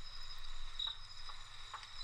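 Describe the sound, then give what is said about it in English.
Faint crickets chirp in a steady, high-pitched drone across quiet forest ambience, with a few soft rustles and no voices. “You can kind of hear the crickets.”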